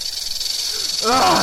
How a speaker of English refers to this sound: Snakes? Hell, there might be like a dozen big old diamondback rattlers in there, just waiting for me to stick my hand in.